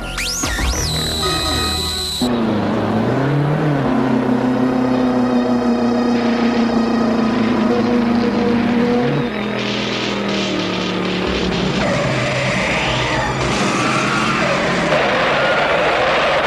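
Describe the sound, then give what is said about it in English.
Race car engines rev and whine loudly and continuously during a race, pitch rising and falling as the cars, engines smoking, skid and spin out of control, with a crowd roaring underneath and no talking. “With smoke starting to billow out of her engine, and then all the other cars start having the same issue, and they all spin out of control.”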